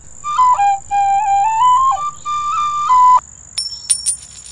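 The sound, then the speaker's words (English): A young boy plays a short tune on a penny whistle, a run of clear stepping notes lasting about three seconds, followed by a few brief, high, chirpy blips. No voices. “Hey, boy, how about you play me a tune and I'll flip you a nickel?”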